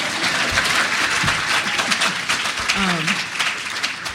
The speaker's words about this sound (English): That was an audience, that was a clapping cue, but no, okay.